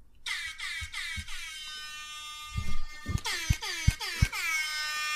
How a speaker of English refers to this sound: But that's what I needed, an air horn. Mm-hmm. An air horn. I got one. Wait, hold on. I mean, I got it on my phone.